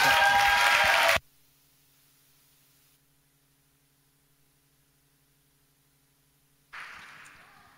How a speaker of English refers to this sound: If you can just clap for them and then...